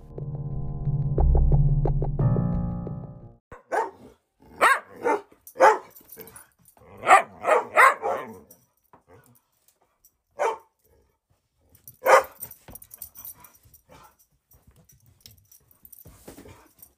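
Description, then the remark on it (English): Dogs bark in a scattered series of sharp, loud yelps, some in quick clusters, with pauses between, after a brief burst of music at the start and faint barks trailing off near the end. “Just in case you needed more dog barking.”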